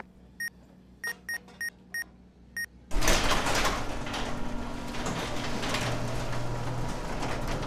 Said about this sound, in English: Well, the door works.